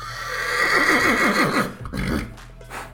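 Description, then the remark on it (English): A horse tied by city gates lets out a loud, quavering whinny lasting over a second, followed by a few breathy snorts and huffs as it settles, with no voices. “His eyes were wide, and he was glancing at the horses tied by the city gates, pawing the ground and snorting their protest, antsy at the noises of the growing crowd.”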